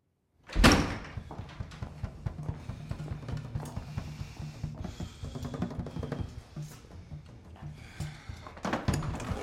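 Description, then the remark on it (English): A locked door to a band room is yanked open with a sharp, loud bang near the start, then a dense, busy wash of rhythmic drum thumping and clatter continues steadily to the end. No one speaks. “After this heated argument, he goes back down to the band room and finally opens the door that he's noticed since the start of the movie.”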